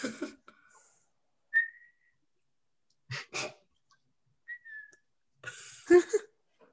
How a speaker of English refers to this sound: I can whistle three different ways. Whoa, what? What does that mean? Girl. Get ready for your ears to hurt.